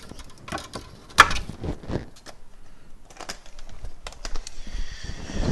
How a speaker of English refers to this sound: Got to take the paper off again.